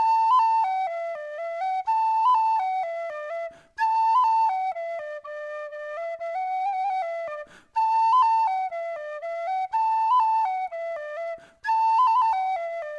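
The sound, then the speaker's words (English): A boy plays a bright, lilting melody alone on a penny whistle, clear, in repeating phrases separated by brief breaths, with no voices. “until the boy touched the penny whistle to his lips and he began to play.”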